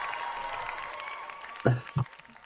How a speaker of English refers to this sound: The crowd goes wild.